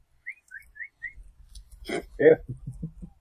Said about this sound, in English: I'm just looking around for a high pitched whistle. Oh, what's that?